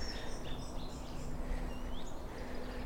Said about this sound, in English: Let's see if we can meet this song thrush up here. Yeah, it's a brilliant song thrush. Some goldfinches tinkling overhead. Okay, let's have a bit of song thrush serenade.